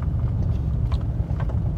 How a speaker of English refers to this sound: And there is a little bit of traffic this morning.